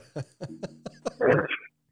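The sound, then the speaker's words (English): A man coughs in a run of short, rhythmic coughs, five quick hacks in succession, then a louder, harsher cough burst, not under any talk. “I like how he's It'd coughing like every fucking other second.”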